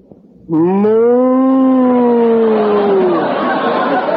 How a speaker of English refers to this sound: Gertrude's a cow. I'm in love with a cow.